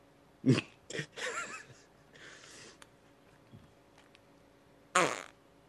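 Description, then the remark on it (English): Squelchy fart noises squeezed from slime putty, several short bursts and a longer wet squeeze, then a quiet pause before one final loud blurt. “We'll hype up his fart tracks.”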